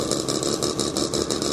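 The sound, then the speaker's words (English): Several vintage race car engines, among them a Mazda, a Lotus 7, an Elva and a Volvo P1800, idle together as the cars line up for the next round a minute before going on track: a steady, dense mechanical rumble with a rhythmic pulsing burble on top and no voices. “Get any closer than where I am right now as they're lining up for the next round. A lot of cars.”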